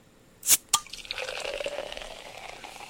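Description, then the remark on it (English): Two quick sharp clinks, then Italian Prosecco from Valdobbiadene, just uncorked, pouring with a steady crackling fizz of bubbles that holds for a couple of seconds and softens slightly toward the end. No voices. “Oh, I meant like more like the bubbly sound.”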